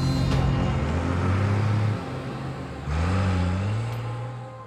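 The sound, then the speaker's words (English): A getaway truck's engine revs hard and accelerates as it leaves Rome, its pitch climbing, dipping at a gear change, then climbing again. It sounds loud before easing off slightly as it pulls away. “Instead, he was arrested and his getaway truck left Rome without him.”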